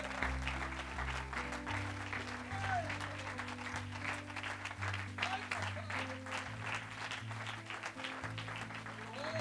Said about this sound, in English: Let's give him a hand clap of praise right as your pastor's coming. God bless you.